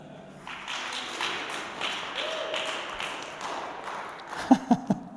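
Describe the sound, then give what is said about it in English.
Light, scattered audience applause rises and continues for a few seconds, fairly thin rather than a full ovation, ending with a few louder, isolated claps. “Call that a round of applause?”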